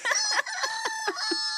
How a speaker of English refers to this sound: When the crowing comes, we are dead.